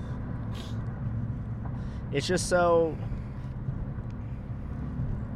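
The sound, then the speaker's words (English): A steady low rumble of road noise from inside a moving car runs throughout, with a brief stretch of someone speaking over it midway. “Yeah, dog, we've been driving for a long time.”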